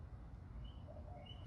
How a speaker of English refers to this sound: It's as frustrating as this damn bird that I wish I had a fucking BB gun to blow its beak off.